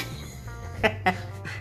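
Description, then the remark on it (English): A male dog lets out two quick, sharp barks in close succession, followed by a softer third yelp, over a low steady background hum. “Why is the dog being like that?”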